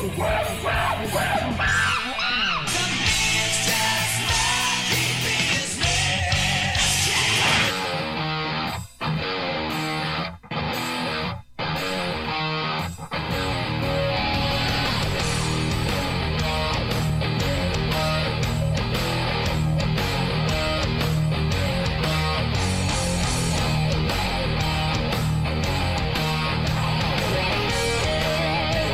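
A loud, dense recording of a song from the Mr. Grinch Christmas movie plays throughout with distorted, shouted-sounding vocals, broken by a few quick drops in sound partway through before the music surges on.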